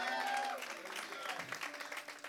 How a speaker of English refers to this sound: Come on, y'all, give them a round of applause.